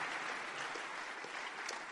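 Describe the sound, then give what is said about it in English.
An audience claps steadily, a dense wash of many hands at a constant, fairly loud level throughout, with no voices rising above it. “Those of you who are clapping, may God do even a greater one for you.”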